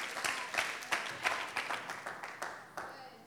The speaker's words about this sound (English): Somebody better clap, because I know that this is good.